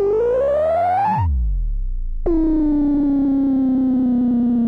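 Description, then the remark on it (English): A synthesized machine malfunction effect: a buzzy, wobbling tone climbs, then drops into a low rumbling groan, and after a brief pause a harsh distorted drone snaps on and slowly sags in pitch. “For cartoony blings and boings, as sound design elements and machine malfunctions”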